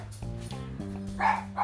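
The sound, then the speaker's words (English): Two dogs bark and yip excitedly in a quick, overlapping burst of high-pitched yelps and whines, loud, with sharper barks near the end. “What's a goddamn dog orgy going on? I don't know. I mean, they're both freaking out.”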